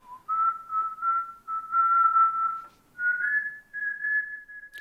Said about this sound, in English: The late actor Michael K. Williams was best known for playing a Robin Hood-esque antihero on the acclaimed HBO series The Wire. You might remember the signature whistle of the character Omar.